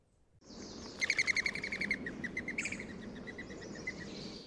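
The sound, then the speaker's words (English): A rapid series of high, airy whistling pulses from mourning dove wings taking off, fluttering rhythmically for a few seconds over steady outdoor background noise. “It comes from the distinctive whistling sound that their wings give when they take off.”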